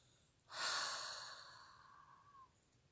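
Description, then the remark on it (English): A deep, breathy inhale flowing into a long open-mouthed exhale during a relaxation breathing exercise for releasing tension, airy, fading gradually over about two seconds with no talking. “Again, deep cleansing breath into the body. Inhale, relaxation. Open the mouth, exhale, release any tension and let go.”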